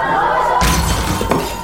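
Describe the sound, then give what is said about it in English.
A thrown brick smashes glass: a sudden loud crash of shattering glass bursts in after a steady background hum, followed by a bright spray of breaking shards and a second sharp crack. “What the? A brick?”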